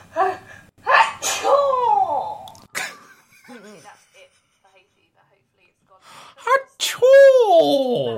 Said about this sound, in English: Hang on, I gotta sneeze.